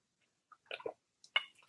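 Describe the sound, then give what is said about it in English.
Someone takes a sip of water: a few short, wet slurping and swallowing sounds in an irregular cluster, fairly quiet, with no talking. “Sorry, I had to take a drink of water.”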